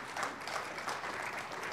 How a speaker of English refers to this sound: Yes, you can applaud that.